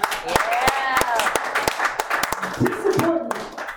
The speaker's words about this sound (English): Thank you for the love and support, and thank you for having us on the show. Can you guys clap one more time for my brother